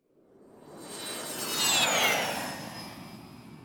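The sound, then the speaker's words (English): An airplane roars past overhead, its broad rumble swelling to a peak and then fading, with a high engine whine that bends downward as it goes by. No voices. “What is it? A plane.”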